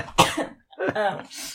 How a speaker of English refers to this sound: Oh, you okay? I swallowed coffee in the wrong tube, so I'm going to be coughing for the rest of the episode, and I apologize.